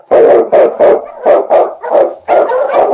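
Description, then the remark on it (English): A husky lead dog, King, an Eskimo lead dog, barks loudly, about nine rapid, urgent barks in quick succession with barely a pause between them. There is no talking. “The Wonder Dog King, swiftest and strongest of Eskimo lead dogs, blazes the trail through storm and snow for Sergeant Preston as he meets the Challenge of the Yukon.”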